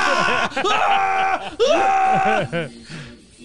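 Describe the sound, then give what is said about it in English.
A man, sealed in a bathroom, screams and groans in anguish in the manner of the scream from the film Mandy: loud, in three or four strained, wavering wails broken by short gasping pauses, trailing off into a weaker moan at the end. “He's sealed in the bathroom doing the Mandy scream.”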